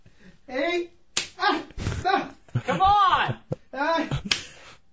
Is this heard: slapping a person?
yes